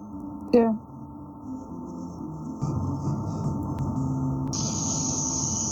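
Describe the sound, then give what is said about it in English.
A voice makes a steady, hissing sizzle like steam, a thin high noise that holds on through the second half over a low background rumble. “I was hissing, like, sizzle steam noise for you.”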